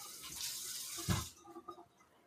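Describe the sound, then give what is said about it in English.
A glass of beer knocked over by a hand reaching for it: a burst of spilled beer splashes and pours for about a second, ending in a sharp slosh, followed by a few faint scattered drips as it settles. “there's beer everywhere.”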